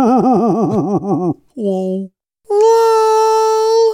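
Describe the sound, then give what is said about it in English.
A voice imitates a whale laughing: a quick warbling run of pulsing hoots, a brief lower moan, then a long, steady, high-pitched wail, all loud with no other talk. “What does a whale laugh sound like?”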